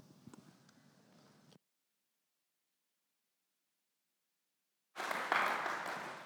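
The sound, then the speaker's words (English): A church audience breaks into loud, dense applause for a Bible reading after a long silence; a softer stretch of crowd noise with scattered claps comes before the pause. “Oh, it's good to clap for God's word and read so well.”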